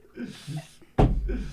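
A single loud slam lands abruptly near the end, a heavy thump with a short rumbling decay, while people are talking just before it and murmuring through its fading tail.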